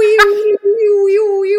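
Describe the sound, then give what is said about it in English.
A voice imitates an eerie siren-like howl, holding one steady, mid-pitched wavering tone for over a second with a brief break near the start, loud and unaccompanied. “what is that you just did? Like a spooky siren.”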